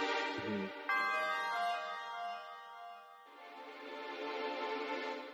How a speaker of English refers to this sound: I think the shrine music is a good example. There's a lot of use of, like, chimes and this, like, degraded noise. You can see it fading. You can already hear the chime. Or, like, bells.